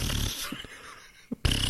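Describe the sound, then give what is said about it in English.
A breathy, airy fart hisses out in two bursts, separated by a short quiet gap with a couple of small puffs, fairly loud, with no talking. “Oh, when you think you're gonna poop, but it just like comes out as air.”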